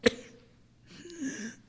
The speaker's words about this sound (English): coughs, spits up blood.